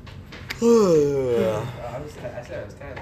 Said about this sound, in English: Bro, I cannot stop yawning, bro. I could not sleep.